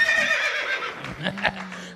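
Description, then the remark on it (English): A horse whinnies loudly, a long shrill neigh that wavers and trails off into lower snorting tones, heard on its own. “Horse of truth. Horse of truth. Horse of truth. Is galloping his way through Zany's here tonight”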